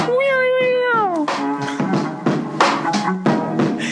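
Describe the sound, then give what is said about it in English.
A voice imitates a car, starting with a drawn-out tone that slides downward in pitch, followed by rough, sputtering bursts of engine-like noise, loud and alone. “I feel like we really need, like, a car sound effect.”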